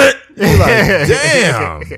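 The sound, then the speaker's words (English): A voice imitates a slow, drawn-out fart: a single wavering, buzzy vocal sound about one and a half seconds long, fairly loud, with its pitch sliding up and down. “I hate it when you try to let the fart out slow and they be like.”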